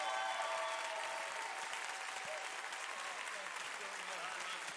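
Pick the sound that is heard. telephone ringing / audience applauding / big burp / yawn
audience applauding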